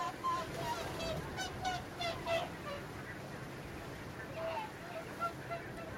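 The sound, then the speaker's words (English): Repeated honking calls from a flock of whooper swans, overlapping and carrying over a steady outdoor wash of background noise, as it is just beginning to get light. “They're hooper swans.”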